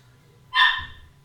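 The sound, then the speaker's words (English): A single sharp dog bark rings out clearly, loud and brief, then trails off into low background hum. “Oh my god, is the dog really gonna cut my time?”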